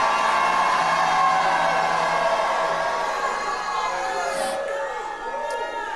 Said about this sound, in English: Come on and shout from Pensacola, Florida, like you have never shouted in your life.